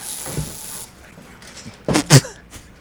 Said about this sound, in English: So you just sprayed Raid all over your computer screen? Smells nice. Smells nice.